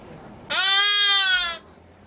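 A lamb at a petting zoo lets out one loud bleat lasting about a second, its steady, buzzy tone sliding slightly lower before stopping abruptly, with near silence on either side.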